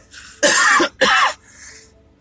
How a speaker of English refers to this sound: If you don't cough, you don't get off.